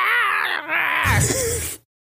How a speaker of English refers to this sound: Yes, scream.